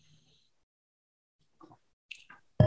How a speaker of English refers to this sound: I just need a sip of water.